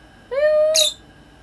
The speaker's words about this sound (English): All you guys, you know, you guys heard our birds. The bird gang. That's Chiquita, just, she likes talking.